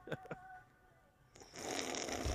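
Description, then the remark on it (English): Two quick, sharp sucking sounds, then a long, loud, airy slurp that runs steadily to the end as someone noisily drinks from a can. No one speaks. “Oh, you gotta slurp it.”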